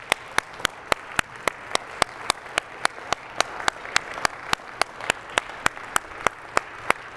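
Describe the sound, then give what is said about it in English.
An audience claps together in a steady, even rhythm, roughly four sharp claps per second, over a continuous wash of crowd noise, with no talking, applauding God during a reading of Psalm 100 in The Message version. “Get on your feet, applaud God.”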